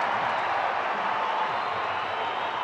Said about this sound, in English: Oh, get up and cheer. Crowd loving it, a great one against the world champs.